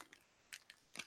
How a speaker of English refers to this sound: Are you fighting a bag of potato chips or something? No, I'm loading my pipe.